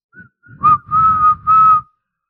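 A whistle is blown in a quick series of shrill blasts: a short, sharp toot followed by two longer, steady ones, loud, with a breathy rush beneath each.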